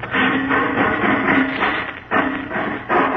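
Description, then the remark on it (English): A heavy bank vault door is torn away with loud, grinding metallic strain and a low droning groan, coming in several long surges broken by brief pauses, with no voices. “Sounds like he's ripping off another door.”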